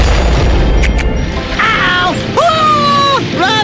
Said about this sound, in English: The explosion just ruptured the Betsy Wetsy piddle canister